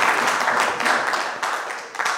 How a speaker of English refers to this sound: Clap for Jesus as you stand to your feet. Clap for Jesus as you stand to your feet.